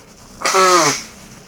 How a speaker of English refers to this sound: Oh, excuse me, I gotta blow my nose.